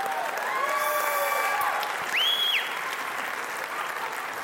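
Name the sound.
audience applauding and cheering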